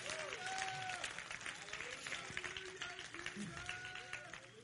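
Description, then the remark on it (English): An audience claps their hands in praise of God, a steady, dense wash of applause lasting several seconds, with faint voices and cheering mixed underneath. “Oh, come on, clap your hands and let's give Him praise.”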